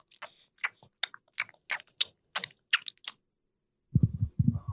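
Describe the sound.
A voice imitates gum chewing with a run of about eight sharp, wet mouth smacks in a steady rhythm, fairly loud, followed by a short low vocal sound.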